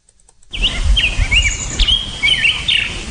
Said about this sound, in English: Birds in the morning.